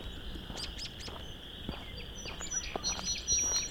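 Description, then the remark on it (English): A song sparrow sings softly at Vine Mount Marsh, about a half hour before sunset on an overcast day, a quick run of bright chirps and trills over a steady, buzzing chorus of chorus frogs in the background. “This song sparrow's right in front of me, but singing quietish.”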